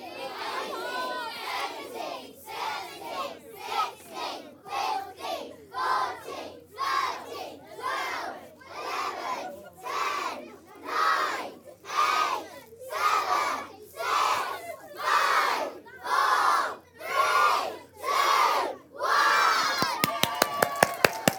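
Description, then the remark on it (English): A large crowd counts down aloud from twenty together, one loud shouted number per beat, about twenty rhythmic voiced bursts, ending in a quick patter of clapping. “Count them down, please.”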